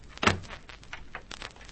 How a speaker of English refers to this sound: I'll shut the door to keep it out.